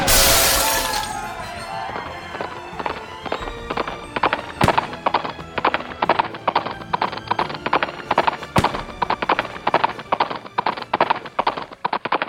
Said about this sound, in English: The horses!